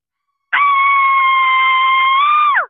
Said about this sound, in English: Oh my God. They're screaming. Oh God. They're screaming.